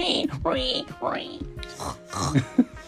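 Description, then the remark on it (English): A voice imitates a wild pig, making a quick run of squealing oinks and snorting grunts over about three seconds, moderately loud. “Bluey and Jean-Luc make a plan to capture the wild pig.”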